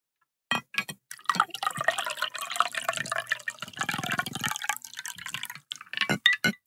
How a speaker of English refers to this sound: But today, for myself, I'm going to go ahead and pour my drink. So yes, we're going to do the ASMR bit. So if you don't like this, skip 5 seconds ahead. Here we go. Oh, dripping.